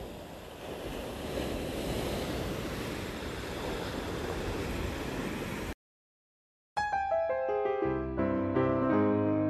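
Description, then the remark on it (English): Ocean waves breaking on the shore by the dunes make a steady, full rushing roar for several seconds, then cut off abruptly. After a brief silence, melodic instrumental music begins. “But to sit here and listen to the insects and watch the birds fly by and hear the ocean, this is the kind of experience that Beston was going for when he isolated himself in the house that would have been near here.”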